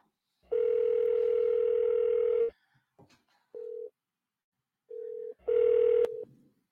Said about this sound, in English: let's dial Igor